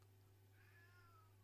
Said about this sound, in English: Ignore the meowing that is probably going on in the background. Yeah, what is... It has very temporarily ceased, but as we were setting up for recording, it just sounded like there were 19 cats in your house. What is going on? No, there is one cat.